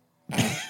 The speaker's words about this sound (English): Coughing now.